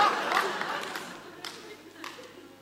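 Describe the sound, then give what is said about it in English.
An audience applauds with a dense patter of claps, fairly soft and steady, with a few sharper bursts and a murmur of crowd voices mixed in. “I think I deserve a little bit more, better applause than that.”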